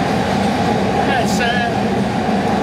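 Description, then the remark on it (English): A four-coach, locomotive-hauled train with compartment coaches roars steadily through a long tunnel, heard from aboard, a loud, enclosed rumble that never lets up, with faint metallic wheel squeals rising briefly in the middle. “we're in a tunnel as well. So in there is the loco.”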